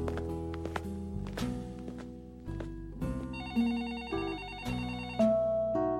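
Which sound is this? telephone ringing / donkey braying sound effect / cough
telephone ringing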